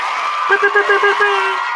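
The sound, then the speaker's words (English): A brief burst of crowd applause and cheering for a birthday, a dense clapping wash with a voice whooping and calling out over it for about a second before it fades. “Let's go ahead and get a round of applause, man.”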